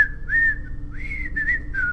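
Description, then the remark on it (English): A person whistles a short, bright TV show theme tune, with clear sliding notes rising and falling in a tune-like phrase, with no talking. “When you said it uses whistling, I was thinking of the Andy Griffith Show. Like, what if it was like whistling?”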